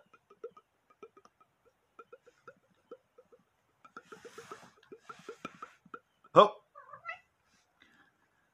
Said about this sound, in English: Meow, meow, meow, meow. Meow, meow.